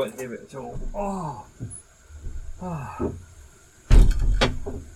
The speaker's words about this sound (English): I'm going to open all the windows and doors, and then all of a sudden you'll go, ooh. You probably won't hear it.